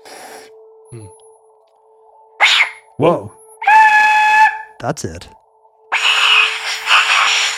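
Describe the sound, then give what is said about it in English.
A spooky, screamy whistle is blown in several uneven bursts, some breathy and noisy, others with a wavering, piercing tone, with short exclamations from a voice in between. “Oh, it does sound kind of screamy. You're getting close to the hollow screamy sound.”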